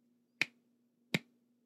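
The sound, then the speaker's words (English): Two sharp, crisp claps land nearly a second apart in a slow, deliberate rhythm, each short, with only a faint steady hum between them. “Slow clap.”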